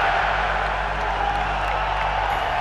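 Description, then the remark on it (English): A large arena crowd, told on a count of three to scream "fuck the Mayweathers," roars and screams in a dense, sustained wall of cheering that holds steady and loud throughout, with no single voice standing out. “When I count to three, I want this entire arena to scream, fuck the Mayweathers.”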